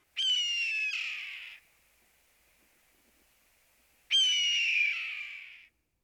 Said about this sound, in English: Of all the hawks in our area, the common red-tailed hawk's call is perhaps the most suggestive of aggressiveness.